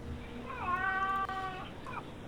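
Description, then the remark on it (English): A cat lets out one drawn-out meow lasting about a second, clear, over a steady low background hum with no talking. “These people, like, they don't seem to care about my cat.”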